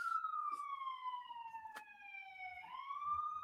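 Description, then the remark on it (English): An emergency vehicle siren wails on a street in Brooklyn, New York, one long tone slowly falling in pitch and then sweeping back up, steady and fairly loud, with a few faint clicks and noises underneath. “some sirens going off here in Brooklyn.”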